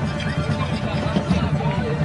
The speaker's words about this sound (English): Hear the crowd finally getting into it. It's been an awful, dull, flat crowd tonight. Finally starting to get into it.